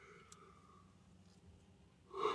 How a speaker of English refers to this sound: Sorry for yawning.